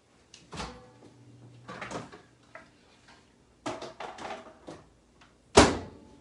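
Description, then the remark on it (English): A microwave door clicks open and thuds shut as a frozen Supreme pizza goes in, followed by a series of short plastic clicks and taps as the timer is set to 3 minutes, ending in a sharp, loud latch-like snap. “We're going to put it in the microwave.”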